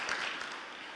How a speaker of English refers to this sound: So let's give him a round of applause and thank the Lord for his gracious gift.